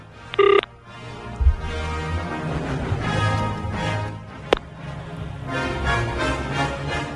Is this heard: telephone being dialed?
yes